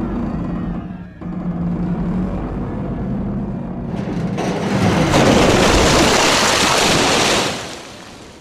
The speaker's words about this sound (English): Through the wall of the tent, and with a cacophonous splash, into Lake Obelisk.